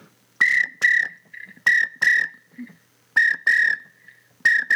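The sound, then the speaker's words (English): Widgeon duck call whistle blown in close, loud paired chirps, two quick whistled notes repeated about four times with softer trailing peeps between, and no talking. “But you're gonna use like a duck whistle. You wanna whistle? I'll give you this is a widgeon, I believe.”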